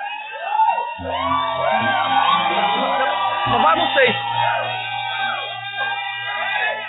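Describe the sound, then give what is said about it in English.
An audience shouting together in worship, many voices yelling and whooping at once in a loud, sustained roar that carries for the whole stretch with no pause. “One of our divine emulations is shouting.”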